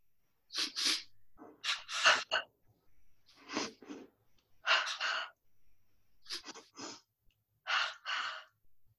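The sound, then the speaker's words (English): Several rounds of a sniff-breathing exercise done with good posture, each made of two quick, sharp sniffs followed by a breathy, voiced "ha" exhale, repeated at a steady pace with short pauses in between. “So again, with a nice posture, we would do two quick sniffs and then saying the word, ha ha.”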